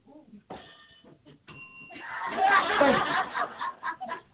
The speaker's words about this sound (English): Okay. Hit that bell.